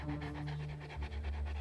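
A large black dog with thick, long hair pants heavily and rapidly, a steady rhythm of quick breathy huffs continuing without pause, with no voices.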